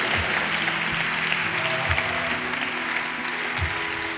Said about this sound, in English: Put your hands together for them. You are not clapping for them.